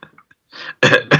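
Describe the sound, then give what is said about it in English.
A loud cough: a faint catch in the throat, then a softer hack followed by two harsh, forceful bursts in quick succession, with no talking. “Now, I had a cough.”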